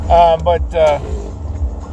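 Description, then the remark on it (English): A steady low rumble of a car driving, heard from inside the cabin, with someone speaking briefly over the engine and road noise at the start. “So here we are driving.”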